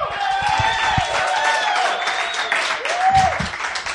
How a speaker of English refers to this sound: That's our show. Thank you to everyone who has asked questions. You can applaud.